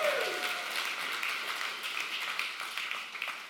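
A large crowd claps steadily and cheers for several seconds for last week's speakers, a dense, sustained wash of applause with a brief whistle near the start, no speech over it.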